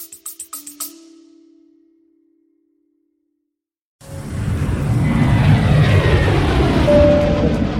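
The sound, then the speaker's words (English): A burst of quick tapping hits fades into a couple seconds of silence, then the loud, steady roar of private jet engines inside the cabin fills the rest, a dense constant rumble. “Hey guys, yes, I'm on a private jet”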